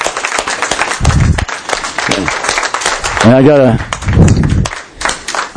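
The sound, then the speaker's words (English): An audience breaks into steady applause for veterans, thanking them for their service, a dense patter of many hands clapping throughout, with voices calling out and speaking over it. “Before I remember, we'll give you a round of applause and thank you very much for your service.”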